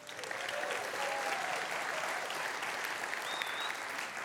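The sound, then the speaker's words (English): An audience breaks into steady, sustained applause for its students, a dense wash of clapping with a few faint cheers or whistles rising above it, holding at an even level throughout. “Before we get started, first of all, shout out, big round of applause for our students.”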